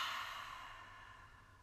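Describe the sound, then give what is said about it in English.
A long, breathy exhale pushed out through the mouth after a deep breath in through the nose was held, loudest at the start and slowly fading over under two seconds, quiet, with no talking. “And exhale out your mouth.”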